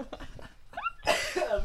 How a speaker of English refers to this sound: keep the mic away if you're going to be coughing like that.